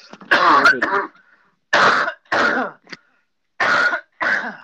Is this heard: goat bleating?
no